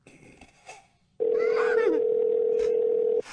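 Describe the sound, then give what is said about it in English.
A telephone ring tone heard over a call line while calling a store's deli department: one loud, steady electronic burst lasting about two seconds, following a brief stretch of faint, muffled background noise. “Pick up the phone, motherfucker.”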